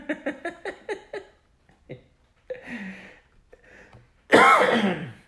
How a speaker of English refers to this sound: Even you can't handle it. You're just coughing.